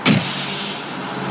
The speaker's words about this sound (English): Sorry, she got to pull away in her truck.